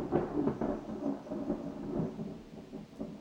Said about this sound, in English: And thunder.